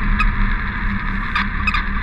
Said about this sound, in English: a high-pitched beep repeated over and over from Melissa's antenna, signaling that we were close to the collar